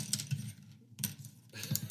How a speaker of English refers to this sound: That's good. I'm just dropping pencils on the desk. It's like a radio drama.